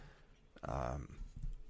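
A single short cough bursts out, a rough, throaty sound lasting under half a second, followed by quiet breathy room noise.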